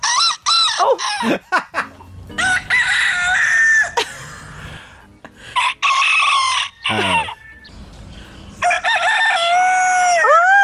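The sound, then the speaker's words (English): Several cockerels crow one after another, loud, with some calls breaking off or trailing away before finishing, separated by short pauses. “There are ones that don't quite finish it.”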